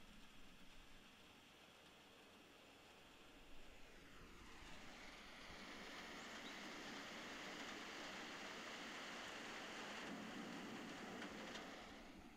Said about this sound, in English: watch as the raindrops fall on this tree, this plant, this flower. Witness the raindrops.